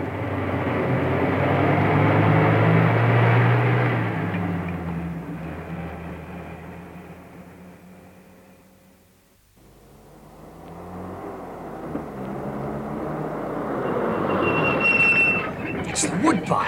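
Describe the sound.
A helicopter roars loudly overhead at a farm, over the lawn, its engine drone dropping away to near quiet midway, then swelling back up again, with faint voices in the background.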